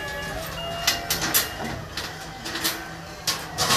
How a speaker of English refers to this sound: He'll pull paper off of some tool.